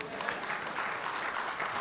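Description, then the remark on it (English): An audience giving God a round of applause: a steady wash of many hands clapping at an even loudness for about two seconds, with a faint murmur of voices mixed in. “Y'all give God a round of applause.”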